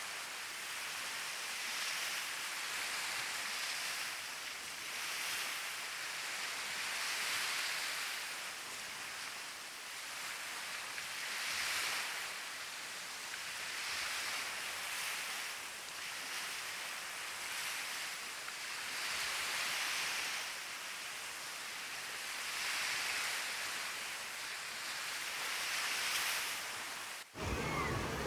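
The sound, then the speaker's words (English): Steady Pacific Ocean surf washes in and out, with waves breaking every few seconds in a continuous, hissing roar. No voices, just the rolling rhythm of the shoreline. “I am looking at the Pacific Ocean while I record this message.”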